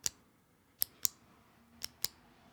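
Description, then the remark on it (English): Crisp mechanical clicks of a retractable pen button, about five sharp snaps in uneven pairs, fairly loud against a quiet background with no talking. “It is a pen with a button on it.”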